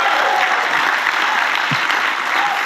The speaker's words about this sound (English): Why don't you, if you believe it, clap your hands on a Sunday morning.